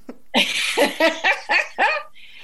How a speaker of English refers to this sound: there's my dog, she wants to come in. My cat's doing the same at the door.